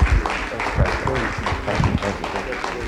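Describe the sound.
A crowd applauds steadily for about three seconds, a dense, even wash of many hands clapping at once, with a few louder individual claps and some voices mixed in underneath.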